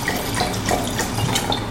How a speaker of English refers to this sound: I thought we'd pour some wine. Sounds good to me.